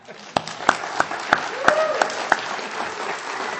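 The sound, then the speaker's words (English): A church audience claps together in a steady round of applause on Anniversary Sunday, honouring a family's seventh anniversary with the church, with a few sharper individual claps standing out and faint voices underneath, tapering slightly toward the end. “I know we'd all like to express our appreciation with a round of applause.”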